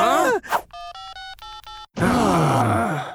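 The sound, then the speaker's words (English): A quick run of electronic tones from a mobile phone keypad being dialed, about six short beeps in a row, framed by brief vocal sounds before and after. “very slowly opened the drawer, and finally pulled out from it... Wow! A mobile phone.”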